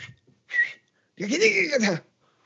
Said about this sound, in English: No, I love to throw, like when I'm shadow boxing somebody, I like to throw out a little whistle there. I'll be like, go.